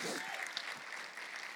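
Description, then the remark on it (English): An audience claps their hands in praise to God, sustained, dense applause, a steady wash of many overlapping claps with no distinct rhythm, fairly loud throughout. “Would you give him a hand clap of praise if you know your God has been good to you and you just want to show a little gratitude?”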